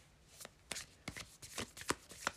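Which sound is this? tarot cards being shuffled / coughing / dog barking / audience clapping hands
tarot cards being shuffled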